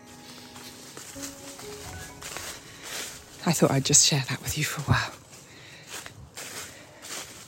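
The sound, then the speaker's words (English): Footsteps crunch through dry autumn leaves on a sunny day in a short burst of crackly, rustling steps, louder than the surrounding quiet, with a person speaking before and around them. “I'm loving the sound of crunchy leaves underfoot though.”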